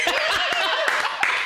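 hand clapping

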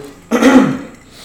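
throat clearing

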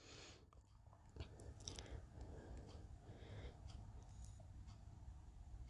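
sipping water

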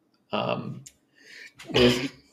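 sneeze

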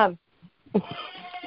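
goat bleating

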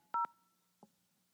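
telephone keypad dialing tones

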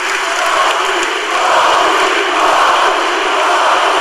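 crowd chanting

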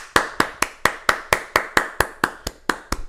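applause

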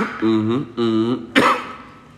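coughing

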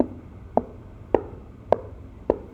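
footsteps

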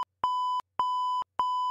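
censor beep sound effect

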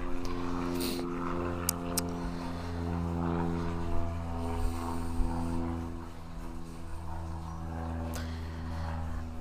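airplane passing overhead

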